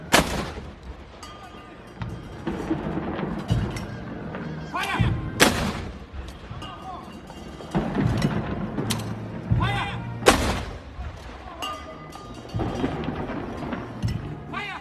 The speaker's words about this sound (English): How I wish this 21-gun salute could be used to shut down the nonsense we are about to experience tonight.